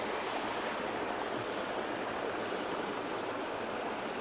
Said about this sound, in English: I'm sitting at a waterfall. Can you hear it? I wish you could see it.